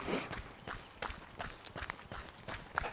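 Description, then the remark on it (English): Quick, regular running footsteps thud and scuff on the ground, about two strides per second, moderately loud with faint outdoor background noise. “Let's run then.”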